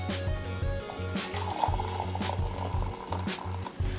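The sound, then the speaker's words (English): About 2¾ cups of boiled water pour steadily into an all-seed, flourless bread mixture for several seconds, a continuous trickling and splashing over a low, pulsing background hum, with no talking. “Okay, and then we're going to do the hot water. 2¾ cups of boiled water.”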